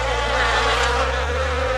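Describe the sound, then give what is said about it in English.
Bees buzz loudly and continuously, a steady droning hum that shifts slightly in pitch as they move, with no voices present. “The bees then carry them to the plants as they buzz around seeking nectar and pollen.”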